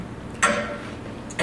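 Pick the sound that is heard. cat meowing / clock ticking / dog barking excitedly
clock ticking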